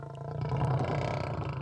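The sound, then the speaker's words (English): A deep, rumbling lioness roar fills the moment, one sustained growling bellow with a strong low-pitched throaty core that swells and holds before easing slightly at the end. “Once in Nubia, Thoth discovered Tefnu had transformed herself into a fearsome, fire-breathing lioness.”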